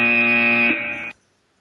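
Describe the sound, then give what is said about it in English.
A loud, harsh electronic buzzer sounds once for about a second, a steady rasping tone rich in overtones that drops slightly in pitch before cutting off abruptly into silence. “I mean, you can tell I'm a fan of the buzzer anyway.”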